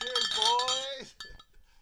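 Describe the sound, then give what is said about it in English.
Glasses of homebrewed beer clink together in a toast, a bright ringing chime that hangs for about a second before a couple of quieter knocks and a faint rustle. “Cheers, boys.”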